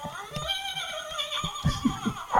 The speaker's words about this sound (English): Is that, you got a horse? Well, yeah, I'm doing pretty well, so I have a horse.